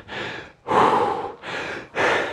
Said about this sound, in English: Let the worst of your heavy breathing subside.